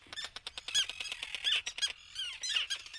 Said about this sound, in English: Mark Seth Lender recorded these terns at Faulkner Island